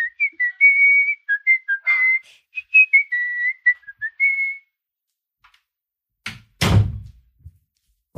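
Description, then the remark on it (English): Someone whistles a short melody for several seconds; after a brief quiet pause, a door is opened and shut with a couple of solid thuds to let an arriving guest in. “Let's just open the door for him.”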